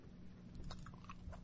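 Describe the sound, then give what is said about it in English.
Someone chewing pepperoni slices, with soft, moist bites and a few crisper crunches in an uneven rhythm, quiet overall and with no talking. “Yeah, I haven't put it together, but I'm just gonna chew.”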